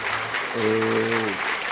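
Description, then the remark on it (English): A crowd applauds a woman's romantic voice with dense, steady clapping throughout, while a brief sustained tonal note rises over the applause midway and then fades. “Oh, you didn't clap for such romantic voice.”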